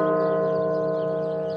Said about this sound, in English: Bells ring out at the National Cathedral in Washington in a staggering moment in the coronavirus pandemic. The U.S. death toll surpassing 500,000, marked as well by the president.